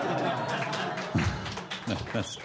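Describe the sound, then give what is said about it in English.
A steady wash of audience applause, a dense crackle of many hands clapping, runs through the whole moment while voices talk over it in short bursts. “I made them applaud.”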